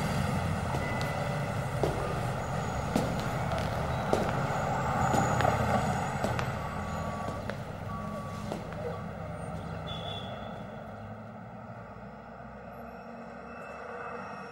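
Steady, low murmur of Fifth Ave street traffic filtering into a museum building, a continuous rumbling wash with occasional sharp clicks and knocks and faint indistinct voices mixed in.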